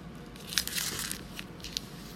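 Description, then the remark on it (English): A dog, Okie, chews and rips at paper, producing irregular crunchy, crinkling tears with a few sharper snaps, fairly soft overall and with no one talking. “He loves tearing paper for some reason.”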